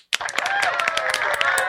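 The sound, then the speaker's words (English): A small group claps rapidly and steadily for a couple of seconds in excitement about the new Manscaped launch, with excited vocal cheering mixed in over the applause. “Clap if you're excited about the new Manscaped launch.”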